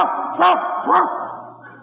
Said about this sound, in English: I did the only thing I could do. I barked. Then I barked some more. And then I barked louder.